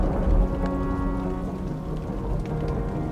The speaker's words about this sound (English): I quiet everything else around me so that I can hear the thunder and the rain as it falls from above.